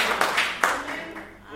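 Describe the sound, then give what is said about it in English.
A group clapping hands: a few sharp, bright claps stand out over a softer wash of scattered clapping and a low murmur of voices, fading slightly toward the end. “Let us not be, you can clap hands, don't be afraid.”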